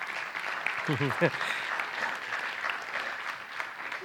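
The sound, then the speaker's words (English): An audience applauds steadily throughout, a dense wash of many hands clapping at even loudness, with a brief burst of voices cheering partway in. “I take offense that you're clapping that she's put up with me for 37 years.”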